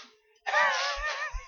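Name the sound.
throat clearing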